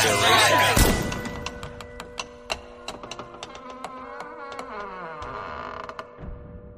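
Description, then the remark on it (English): Heavy church doors creak slowly shut, a drawn-out groaning whine broken by a series of sharp ticking clicks, fairly loud, before settling into silence. “I love the ending there, especially the idea of the closing of the doors is very symbolic.”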